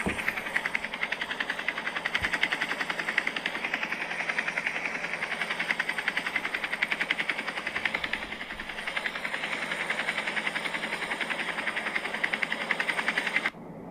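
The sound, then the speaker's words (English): A steady mechanical engine hum inside a submarine, with a broad, hissing rush, runs unchanged for about thirteen seconds, then cuts off abruptly. No one speaks over it. “Because I've been on a submarine and it sounded just like this.”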